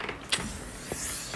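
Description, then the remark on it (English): A chair creaks and groans under shifting weight as someone nearly falls off it, a brief strained rubbing noise with a couple of sharper squeaks, fairly loud, with no voices. “Whoa, this chair.”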